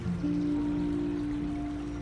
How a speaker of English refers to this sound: As you tune in to the soothing melody of the river, the whispering of the breeze, and the mesmerizing harmony of the strong but peaceful waves.